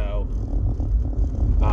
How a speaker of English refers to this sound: My car is a little loud because it's cold, and it does that for some reason. I'm not 100% why, but it does.